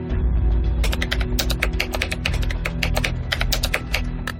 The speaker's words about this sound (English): That's Donahue typing his new password, twice, and the keylogger picks it up.